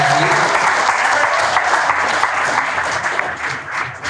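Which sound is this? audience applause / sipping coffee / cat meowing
audience applause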